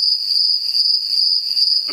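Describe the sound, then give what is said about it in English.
A steady, shrill cricket chorus trills continuously at high pitch, fairly loud, with no voices or other sounds breaking through. “In case you can't hear that, Al, those are crickets.”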